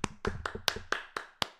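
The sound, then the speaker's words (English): A lone pair of hands claps about seven times at a steady, slightly slowing pace: sharp, dry smacks with a short echo and no other sound around them. “Did you not hear the clap?”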